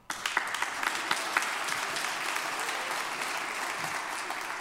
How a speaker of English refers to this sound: I got one hand clap over there. I'm going to give myself one.